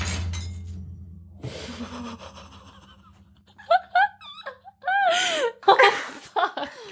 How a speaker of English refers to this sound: Sab just shattered her wine glass.